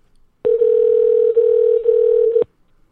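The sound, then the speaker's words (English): A single telephone ringback tone from a call placed to a guest sounds for about two seconds, a loud, steady electronic hum at one pitch that starts and stops abruptly, with near silence around it and no voices. “You guys hear that ringing?”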